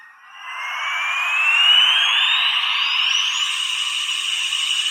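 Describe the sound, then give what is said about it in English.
The sound box on a G2 Ramjet toy plays an electronic plane taking-off and landing noise: a loud, steady whooshing whine whose pitch climbs gradually for about five seconds, with no one talking over it. “It's a very accurate plane taking off and landing noise.”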